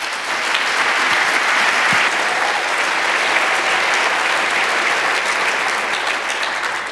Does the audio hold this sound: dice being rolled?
no